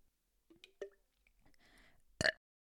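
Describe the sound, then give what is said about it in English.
A few soft wet clicks and a stretch of breathy rasp lead into one short, loud, gulping burp from swallowed air that ends abruptly. No one talks. “I swear to God, I swallowed air.”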